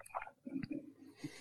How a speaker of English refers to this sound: for giving me one of those loud swallows.